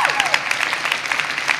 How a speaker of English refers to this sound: If you agree with, keep clapping if you agree with that.